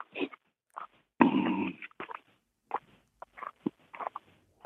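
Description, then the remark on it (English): Footsteps crunch over a rocky, cactus-lined mountain trail in an uneven series of short, gritty scrapes, with one longer, louder grinding step early on; no one speaks. “Am I hearing the crunching of your footsteps on the side of a mountain trail right now?”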